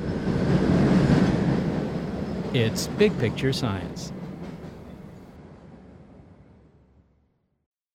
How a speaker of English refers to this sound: Coming up, the origin of noise, and which is louder, the space shuttle blasting off from Cape Canaveral or a Boston subway train pulling into a T station?